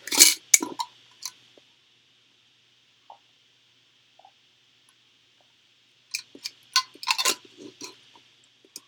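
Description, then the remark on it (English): Quiet slurps and wet mouth clicks from someone sipping water from a cup, a short cluster at first, then near silence, then another busier run of sips and swallows. No one speaks. “Wait, let me get a sip of my water actually.”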